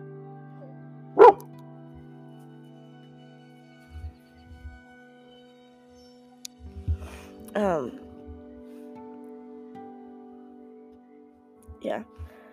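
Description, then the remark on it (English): A pet dog barks in a few sharp, separate bursts spread over several seconds, the first loud, the later ones softer, with scattered low thuds and a steady hum between them. “Sorry, my dog's losing it now.”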